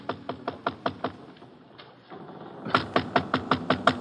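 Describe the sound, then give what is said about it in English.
Someone raps on a ship's cabin door in two bursts: a quick series of about seven knocks, a brief pause, then a louder, more insistent run of knocks. No voices are heard. “I wait a short distance away while he knocks on the door.”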